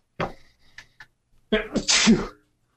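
A loud sneeze bursts out, preceded by a sharp intake and a couple of quick catches, then a second breathy explosive sneeze follows a moment later.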